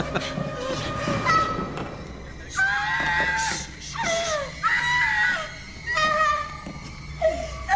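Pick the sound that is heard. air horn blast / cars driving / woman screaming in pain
woman screaming in pain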